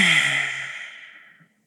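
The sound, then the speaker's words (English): A single forceful open-mouthed exhale with the tongue stuck out, done as Lion's Breath in a breathing exercise after a deep breath in through the nose: a loud breathy "haaa" with a faint voiced edge at the start, fading steadily over about a second and a half, with no talking. “Open mouth, stick your tongue out and exhale all your breath.”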